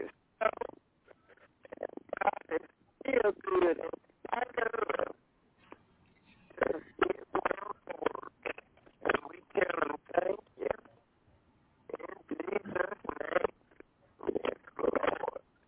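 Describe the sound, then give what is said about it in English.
A thin, phone-quality voice breaks up into choppy, garbled bursts, cutting out abruptly into short stretches of silence before returning, with the connection sounding unstable throughout. “I don't know what happened to your phone if you moved somewhere, but it's kind of cutting in and out bad.”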